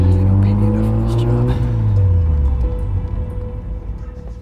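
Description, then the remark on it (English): A car engine roars, its steady, loud drone climbing before the pitch shifts and drops away as the car surges forward and pulls off to follow a truck. “Just stop talking and follow that truck.”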